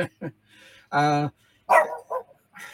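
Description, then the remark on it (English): A dog barks several times: short sharp yaps, then a longer harmonic bark-whine, followed by a few more barks in an uneven rhythm, loud and clear with no other sounds. “I think I might have to put that dog out.”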